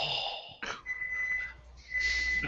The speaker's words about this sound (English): All right, and judging by the sound of the buzzer, that's our show tonight. Sorry about that, guys.